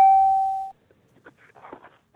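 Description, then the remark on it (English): A doorbell sounds one clear, ringing chime that fades out within a second, followed by faint murmuring and background shuffling. “Try the doorbell.”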